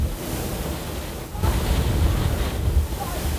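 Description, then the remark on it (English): Wind blows steadily outdoors on a cold night, a continuous rushing roar with heavy low rumble that swells louder partway through and stays strong, with no clear voices above it. “I don't know if they're playing in the wind, but I can hear them outside, but it's windy, so you're playing in the wind.”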